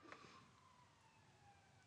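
A police car siren wails faintly outside, its steady tone drifting slowly downward in pitch over a low background hum, with no one speaking.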